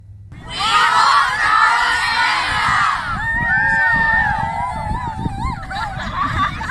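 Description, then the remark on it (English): A large group of students of a Christian school in Southport shout together in unison, loudly announcing that they walked across Canada, followed by a burst of excited cheering and high-pitched yelling that carries on to the end. “That's the students of Southport's Lighthouse Christian School shouting the news that they walked across Canada.”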